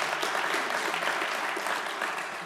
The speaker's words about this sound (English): It's a good place to clap.